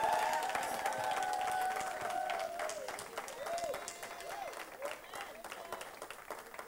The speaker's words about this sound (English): Enjoy what God has given to you and be grateful to him. Let the hand clap.